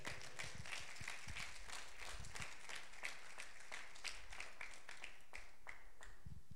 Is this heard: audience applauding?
yes